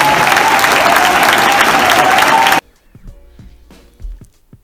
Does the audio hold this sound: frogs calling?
no